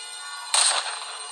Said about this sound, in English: At 8 a.m. on July 15th, 1997, in South Beach, Miami, the peace of the morning is shattered by the sound of two gunshots fired at Gianni Versace.